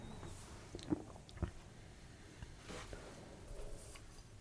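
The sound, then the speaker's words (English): A quiet sip of beer during a beer tasting: two soft wet mouth clicks and slurps in quick succession, then faint swallowing noises. No one speaks. “All right, I went in for a sip because tropication was not giving up its aroma for me, not giving me words to put out my mouth hole.”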